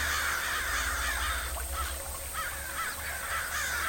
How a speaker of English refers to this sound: Several more crows called out in response. Within seconds, the three crows on the ground were joined by five more, then 10, then 20. The calls grew louder as their numbers multiplied, in turn drawing even more.